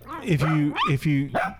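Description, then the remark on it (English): A dog named Chipper gives a quick run of playful play barks, about four short, pitch-bending yaps and yowls in a row, fairly loud. “That's his play bark.”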